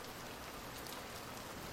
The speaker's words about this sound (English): The sounds that I remember growing up specifically are when it rained, and that sort of sound when it hits the sand. And I think where I am today, it's raining, and it's something that always transports me back to home,